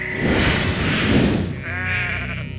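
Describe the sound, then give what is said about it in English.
Several sheep of a herd bleat loudly, their wavering, overlapping cries blending into a noisy herd chorus that settles into a single quavering bleat near the end. “Go collect wool from that herd of golden sheep, but be careful.”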